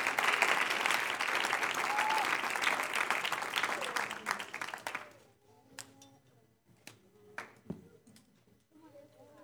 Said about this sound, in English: Praise God. Let's give the Lord another hand clap in this place.